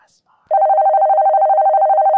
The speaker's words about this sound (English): What? My damn phone's ringing.